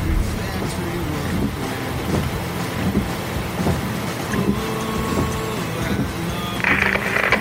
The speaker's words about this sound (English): Just once, I would love a rain-free ride. Is that too much for an old trucker to ask for?